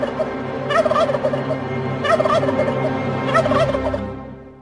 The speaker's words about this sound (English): That is our friend, the beady-eyed bird. Good luck to all you turkey hunters out there.